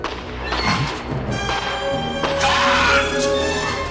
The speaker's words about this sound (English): He crushed it. It's a fucked up shriek. It was out of place.